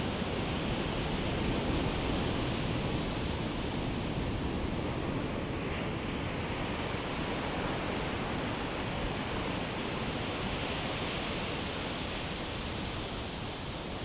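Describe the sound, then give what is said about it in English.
Ocean waves wash against the shore in a steady, continuous roar, a dense hiss of surf with no distinct individual breaks, moderately loud, with no voices. “And as you walk towards the water's edge, you can hear the sound of waves crashing against the shore.”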